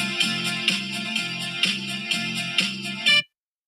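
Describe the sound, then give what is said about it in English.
A bright electronic mobile phone alert tone plays a short repeating melodic pattern about six times in quick, even succession, loud, then cuts off abruptly. No one speaks. “My phone turned off for some reason.”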